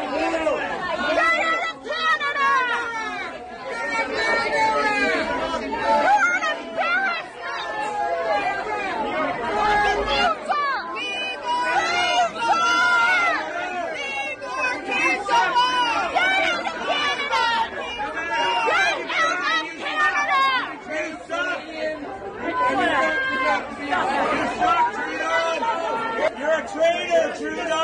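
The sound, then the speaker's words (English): A dense crowd of protesters at the farmer's market outside City Hall shouts and talks over one another as Trudeau takes selfies with supporters, loud and overlapping without pause for the full stretch, with raised, strained tones rising out of the constant din. “Protesters showed up at the farmer's market outside City Hall as Trudeau took selfies with supporters. Here's what that sounded like.”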